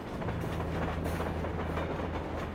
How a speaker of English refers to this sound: Hopping freight trains was really dangerous, but it became a common way to travel for a lot of teens.